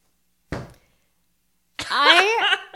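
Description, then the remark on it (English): A single sharp thud of a book being slammed down onto a surface lands loud, then fades quickly. After a short silence, a voice breaks into an animated, wordless vocal reaction. “just slammed the book down”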